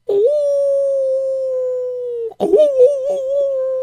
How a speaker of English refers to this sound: Oh, no, wolves are here, too.